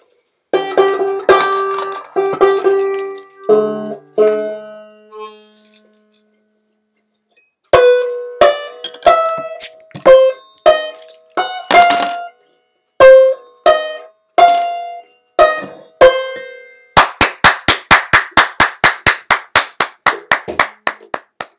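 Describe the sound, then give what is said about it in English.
A small in-house band, plays a short intro song: plinky, pitched percussive notes in a loose, uneven melody, a brief gap, more notes, then a fast, steady run of sharp claps or taps to finish. No talking. “We have our in-house band, the ….”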